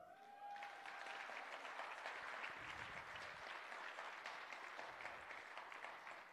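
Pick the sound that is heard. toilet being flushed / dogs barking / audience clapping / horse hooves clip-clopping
audience clapping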